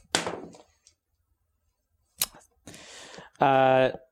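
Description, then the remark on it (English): Dice clatter and tumble across a table in a couple of short bursts of clicking and rattling as a player rolls a dexterity saving throw, the dice hitting a lump and landing on 5, followed by a brief voiced sound at the end. “Okay, so we need to get a dice tower or something because there's a lump here, and that was going to be a good roll until I hit the lump and then rolled to a 5.”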